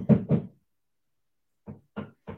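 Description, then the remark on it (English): Two loud knocks on a door, a brief silence, then three softer, evenly spaced knocks, with no voices. “I hear you knocking, but you can't come in.”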